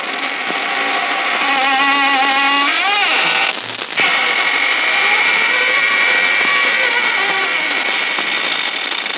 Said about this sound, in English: This is your host opening the squeaking door for another session of the AGGMS, the Association of Ghouls, Ghosts, and Midnight Spirits.